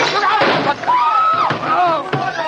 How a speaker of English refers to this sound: He knocked my hand. The revolver went off. The shot went wild. I swear it did.